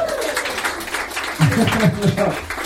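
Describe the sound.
Audience applause for the lighting technician at the start of an evening live show, Experimentet, a dense, steady patter of many hands clapping throughout, with voices calling out over it in the second half.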